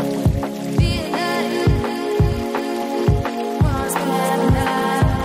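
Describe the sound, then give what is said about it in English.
Steady patter of rain blends with an electronic music track, its hiss running under a regular, punchy bass beat and sustained synth tones throughout. “Another rain-based tune.”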